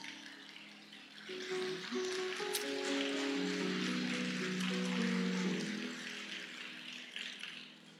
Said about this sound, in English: So I don't really know why you're clapping.